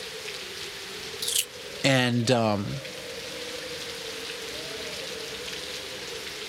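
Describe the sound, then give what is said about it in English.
A light rain sound effect: steady light rain patters continuously across the whole stretch, a soft, even hiss of drops with a low hum underneath; a man's voice briefly speaks over it partway through. “I'm going to need some rain and some wind, right?”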